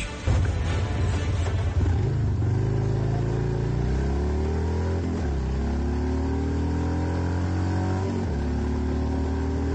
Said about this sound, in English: I gotta tell you, that sounded great. I recorded myself yesterday on my motorcycle. That was me.